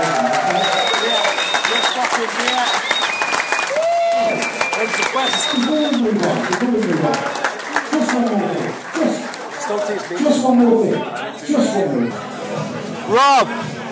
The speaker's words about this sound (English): But I wanted to give them all a big round of applause. Thank you guys so much.